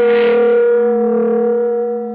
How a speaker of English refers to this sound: For an instant, I didn't know what had happened. The shock had jarred the room like it was built on a plate of jello. Then I remembered we were directly under the huge bell of Dorchester Towers, Cairo's version of the Big Ben.